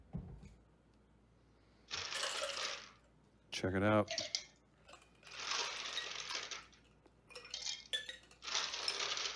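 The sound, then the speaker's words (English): Bursts of rattling, clinking ice tumble into a glass while a mixed drink is being made, in several separate pours, each a second or two long, with a short spoken remark between the first two. “Now, what we're going to do is fill your glass with ice.”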